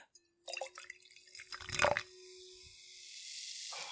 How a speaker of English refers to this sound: What have you got there? I am just going to pour something here. Oh, just a little hint. Here we go.